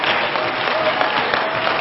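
A church audience claps hands unto the Lord during a worship service in a dense, sustained wash of applause, steady and fairly loud throughout, with no distinct individual claps standing out and no talking.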